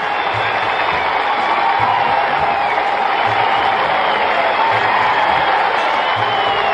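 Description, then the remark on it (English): A sellout arena crowd at the new Madison Square Garden roars in a sustained standing ovation as Knicks captain Willis comes out, a dense, loud wash of cheering and applause that holds steady throughout with scattered whoops and a low rhythmic thumping underneath. “It's a standing ovation at the new Madison Square Garden.”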